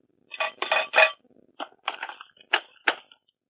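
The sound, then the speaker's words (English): A bowl, a couple of glasses and a Costco-sized bag of Ziploc slider bags are knocked over and tumble and clatter down, a quick cluster of ringing crashes followed by several separate bright clinks, fairly loud, with no voices. “There was a bowl that came down, a couple of glasses, a Costco-sized bag of Ziploc slider bags.”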